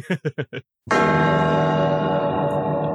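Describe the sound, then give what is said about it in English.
A golden bell rings out once, loud, its rich metallic tone sustaining with a long shimmering decay. Four short vocal bursts come just before it. “It's the golden bell.”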